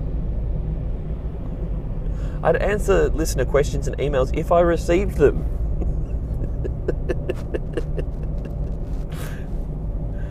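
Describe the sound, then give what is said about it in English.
Steady low engine rumble fills a moving car's cabin throughout, with a man talking over it for a few seconds and faint clicks and road noise continuing after he stops. “I'm doing this while I'm in the car.”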